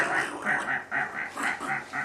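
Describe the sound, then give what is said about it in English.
A computer fan gives off a rapid string of nasal, duck-like quacking squeaks, about four per second, steady, with no voices; the noise comes at random from one of the computer's fans. “that's not set properly or one of the fans isn't because there's a sound coming from it. It sounds kind of like almost like a frog.”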